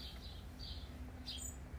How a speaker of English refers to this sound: Ah, the sun has just come out. It has stopped raining. The birds are singing.